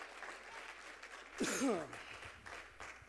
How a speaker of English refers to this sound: If you believe that, give him a great big hand clap of praise right now.